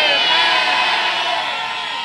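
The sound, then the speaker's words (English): An audience shouts amen together at the preacher's call during a sermon, a loud, sustained roar of many overlapping voices that holds steady for about two seconds with no single voice standing out. “If you did not drop your amen in the house, shout it right now like a thunder.”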